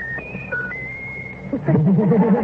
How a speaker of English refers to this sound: Whistle your favorite tune. Whistle your favorite tune. Whistle your favorite tune. Whistle. Whistle your favorite tune. Better throw him a grape. Whistle your favorite tune. Whistle.